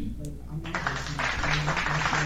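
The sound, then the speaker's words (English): A crowd breaks into loud, sustained applause after a brief quiet start, a dense wash of clapping that holds steady to the end, with a faint low hum underneath. “And the crowd agrees. That's literally a sound effect.”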